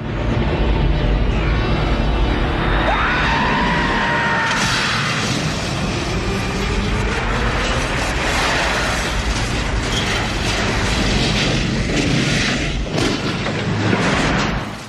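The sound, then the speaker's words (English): Humongo's battle vehicle crashes and smashes apart into a million pieces in a sustained, dense roar of grinding metal, with screeching tones early on and sharp bursts of smashing debris throughout, loud from start to finish. “Humongo's battle vehicle smashes apart into a million pieces, as does the bloodied mess that was Wes.”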